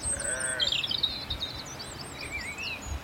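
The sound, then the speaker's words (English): A sheep bleats briefly from a steep, rushy meadow where sheep graze in a deep valley, while thin, high bird calls chirp and trill through the rest of the moment over a soft outdoor hush. “Some sheep grazed, steep, rushy meadow.”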